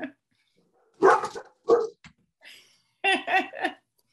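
A female dog barks in a few sharp bursts, wanting to be let out: two loud barks, a short pause, then a quick run of three more, with quiet gaps between.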